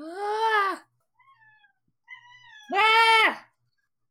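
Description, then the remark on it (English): A male cat lets out two loud, drawn-out meows with quieter, thin chirping cries between them. The calls are harmonic and wavering, almost screaming in tone, with no talking. “No, he just wants to scream.”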